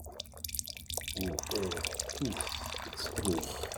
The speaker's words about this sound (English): So we're pouring our next glasses of wine here. Please continue. With the aerator.